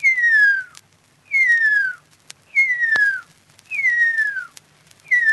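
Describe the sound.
A Maori person whistles in imitation of the song of the extinct huia bird, in an analog mid-20th-century recording, now digitized. Five clear, slurred notes each glide downward in pitch, evenly spaced with short pauses, and the last is cut off. A few faint clicks sit between them.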